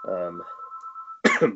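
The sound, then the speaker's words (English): A steady, thin electronic tone of an incoming phone call rings out for about a second, briefly overlapping a voice before a short, abrupt vocal burst cuts in. “apparently you have a phone call coming in.”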